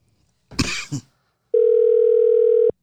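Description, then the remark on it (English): A short cough or throat-clear, then a single steady electronic ringback tone from an outgoing phone call, holding an even pitch for just over a second before cutting off. “I'm totally fucked by making this call.”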